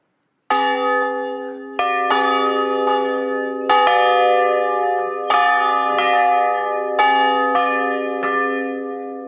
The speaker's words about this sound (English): And we're just ringing the bells for everyone who's late to the service. They'll hear the church bells ring. Did you know the largest bell here weighs 1,100 pounds and was made in 1908 in a foundry in Ohio?